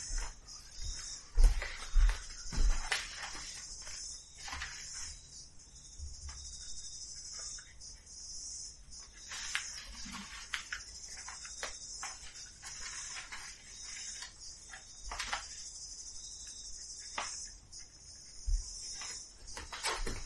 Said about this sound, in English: Oh, you want to edit out the cicadas on the recording?